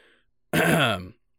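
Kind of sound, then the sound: human body sound, throat clearing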